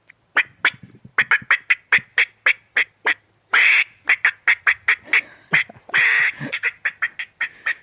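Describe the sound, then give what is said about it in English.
A hunter's voice imitates a squirrel's bark: a rapid, steady series of sharp barks, broken twice by longer raspy chattering bursts. No talking. “Show me your squirrel bark.”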